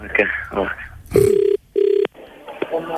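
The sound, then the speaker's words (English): A phone ringback tone sounds twice as a call is placed to someone's dad, two steady electronic buzzy bursts with a short gap, following brief speech and with faint voices continuing around it. “I'm going to call your dad now and wait for him to put the phone down, and then I'm going to come straight back to you, okay?”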